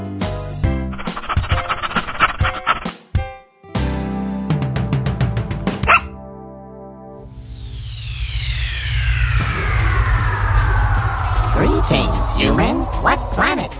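A dog barks in quick bursts within a busy, music-backed jingle, mixed with quacking-like cartoon effects and sweeping, descending tones; no one speaks.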